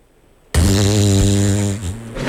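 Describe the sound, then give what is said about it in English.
A loud fart noise made with the arm kicks in abruptly after a short silence, a buzzing, flapping blurt with a steady low pitch that lasts over a second before trailing off. “I will be providing, using the arm, I'll have you know, listeners, it's not that kind of show. The farts”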